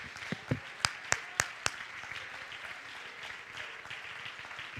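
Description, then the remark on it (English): A crowd standing and clapping their hands to rejoice: a handful of sharp, loud claps ring out at a steady beat, then blend into a continuous patter of many people applauding together. “Oh, come on, stand to your feet right now and clap your hands.”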